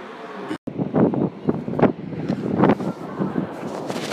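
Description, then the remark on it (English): Atlantic Ocean surf with strong wind, recorded on an iPhone 6 held inside a jumper: a continuous broad rushing roar broken by gusty swells and buffeting against the microphone, muffled, with a brief dropout near the start. “The sound of the Atlantic Ocean.”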